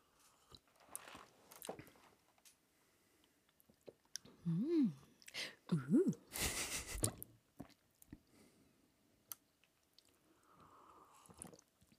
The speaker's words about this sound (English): Ooh. Sorry, I took like a big gulp right into the microphone.